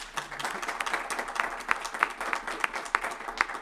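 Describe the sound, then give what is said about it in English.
A small audience applauds Dr. Garcia after she joined the conversation, a steady few seconds of dense patter of many hands with a few sharper individual claps standing out in a loose, regular rhythm. “Let's give her a hand.”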